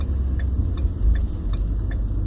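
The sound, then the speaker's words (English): A truck engine idles with a steady, heavy low rumble, and a faint regular ticking repeats about twice a second on top of it. No one speaks. “The sound the truck is making is basically my brain.”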